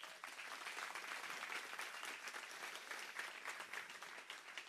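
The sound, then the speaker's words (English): An audience applauds two new church staff members steadily for several seconds, a dense, even wash of many hands clapping with no voices rising above it. “Those two new staff, I want to say thank you to them right now, and this is a pause for you to clap for them.”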